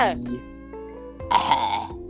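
A throaty cough: a short rough burst, a brief voiced hum, then a louder harsh hack lasting about half a second, with no talking around it.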